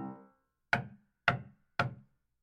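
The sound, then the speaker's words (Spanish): Three firm knocks on the wooden door of a small cottage, evenly spaced, each a sharp rap with a short hollow ring that fades before the next. “Pero en vez de irse por su camino, se dio la vuelta y tomó el sendero directo a la casita de la abuelita y tocó la puerta.”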